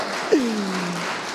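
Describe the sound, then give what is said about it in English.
Steady audience applause fills the whole moment, a dense wash of clapping, with a brief falling vocal whoop or whistle rising above it early on, applauding the speaker's parents, who are visiting from Arizona. “They got two claps. My parents are here from Arizona. We can get more than that.”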